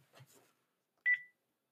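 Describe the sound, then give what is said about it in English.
A faint rustle, then a brief pause and a single loud electronic tone from a house phone, a steady beep lasting about a quarter second that ends abruptly. No one speaks. “Do you have a house phone?”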